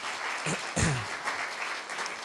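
Audience applause: a dense, steady patter of many hands clapping, with a brief voiced shout or cheer rising above it near the start.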